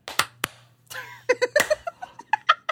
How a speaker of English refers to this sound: Are you just clapping a second later to mess with us? What is this?